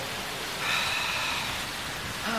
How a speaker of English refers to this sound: No, besides any minute now, it's gonna... Oh, please don't rain. Of course.